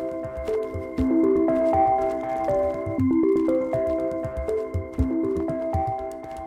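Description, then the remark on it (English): A stylized bat echolocation effect, sent out as the bat leaps into the air: rapid, steady electronic tones that step up and down in pitch, repeating in a looping pattern at a moderate level with no talking. “Buffy leaps into the air. She sends out her sonic sounds.”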